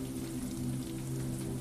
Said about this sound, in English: You long for a tropical escape, yet at the same time you appreciate the sound of the rain and the fog that forms on the tall windows of your apartment.